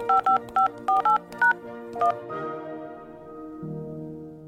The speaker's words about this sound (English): If there was a phone number that you dialed a lot, like your best friend or your parents, you'd eventually memorize what their numbers sounded like